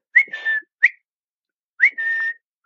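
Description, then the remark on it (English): A person whistles a short recall call for a dog twice while playing fetch, each a quick rising chirp followed by a sustained steady tone, clear with a pause between, no talking. “And every day I would do this whistle.”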